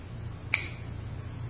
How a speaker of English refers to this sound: Because with every click of that clock,